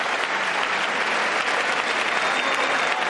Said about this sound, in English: Live coverage from CBS News, President Joe Biden in the House chamber getting the applause after his first State of the Union speech.